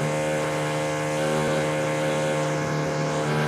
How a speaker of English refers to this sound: What the hell was that? I think it was a drill.